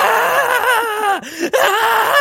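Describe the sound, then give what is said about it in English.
A person vocally imitates someone screaming in the middle of a train carriage: one loud, sustained, wavering cry lasting about two seconds, broken by two quick catches for breath, with no other talk. “Someone just standing in the middle of a train cart that just screams like. Just screaming.”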